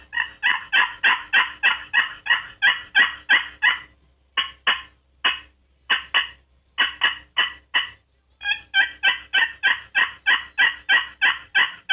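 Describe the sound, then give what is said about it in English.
Hen turkey yelps played on a box call to get turkeys to gobble: loud, raspy notes in quick, steady runs, with a few shorter bursts and pauses before another long series. No voices. “That's a hen pleading.”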